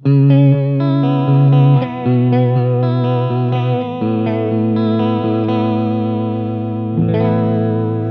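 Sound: vibrato effect on instrument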